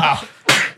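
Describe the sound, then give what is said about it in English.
A single sneeze: a brief voiced intake followed by a sudden, loud, breathy burst that trails off within a fraction of a second. “Bless you.”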